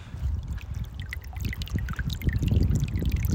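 Water runs and trickles steadily, with a low rushing flow underneath and bright splashing droplets on top, continuous throughout without any voices.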